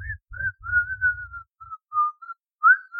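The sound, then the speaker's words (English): Someone whistles a slow, eerie tune in a steady stream of wavering notes, fairly clear, with a low rough rumble underneath during the first half; the tune the character Shao Clown whistles while dragging an axe behind them. “That's what I think when Shao Clown is about to murder someone, they're like dragging an axe behind them. And that's what they whistle.”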